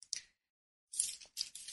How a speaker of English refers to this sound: Hear me turning the pages. It's one of my favorite sections, The Healed Relationship.